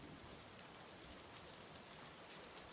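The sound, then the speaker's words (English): Steady rain patters against the glass window and hard-top roof of a taxi in London, a dense, continuous hiss of drops with no pauses and no voices. “After clicking your seatbelt in place, you rest your head back in the headrest and close your eyes to the sound of the rain pattering against the glass window and hard top roof.”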